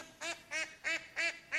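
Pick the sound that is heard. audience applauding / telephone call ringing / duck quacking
duck quacking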